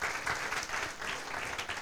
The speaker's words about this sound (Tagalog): Nga po, isa pong malakas na palakpak para sa ating Panginoon.